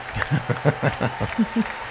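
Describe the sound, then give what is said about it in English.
Applause from a crowd of Members of the US Congress as the President of the United States is presented, with a series of sharp, loud claps in a quick, uneven rhythm over a steady wash of hands, and a few voices murmuring underneath. “Come on, don't clap in the mic, please.”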